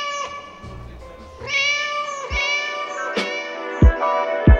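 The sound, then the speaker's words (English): A cat named Doris meows in a studio in long, drawn-out wails that run almost continuously, with a few soft low thumps breaking in toward the end. “She is an amazing cat.”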